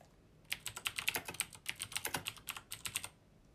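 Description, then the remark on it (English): Rapid, clattering keystrokes on a computer keyboard, a steady burst of sharp clicks lasting about three seconds, fairly loud with no talking. “I also apologize for the keyboard, I know it's loud.”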